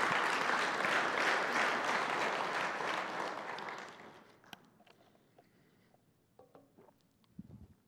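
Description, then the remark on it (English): A church crowd breaks into steady, dense applause for 55 salvations over the last 10 months, holding strong for about four seconds, then quickly thinning out to a few scattered claps and faint rustling. “Clap for that.”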